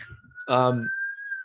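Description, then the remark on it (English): An ambulance siren in Boston holds a steady, high wailing tone that rises slightly throughout, while a short burst of a person's voice briefly cuts in over it. “You probably hear the ambulance. This is constant.”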